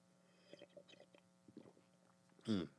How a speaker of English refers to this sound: I fucking ran out of coffee. And, I got a little sip of seep. Y'all want to hear me sip this coffee?